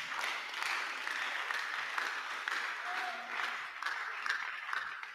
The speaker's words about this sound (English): Clap for the pastor.